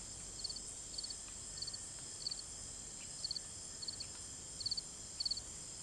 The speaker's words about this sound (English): Before long, you start to hear little chirrup sounds of crickets.